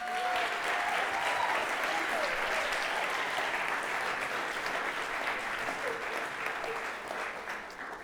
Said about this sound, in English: So I just want to say thank you. Can we just go ahead and clap for them?